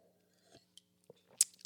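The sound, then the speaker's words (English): A quiet sip of a drink: a few small wet mouth clicks, then a brief slurp and swallow near the end, with no talking. “I got to get a little sip here.”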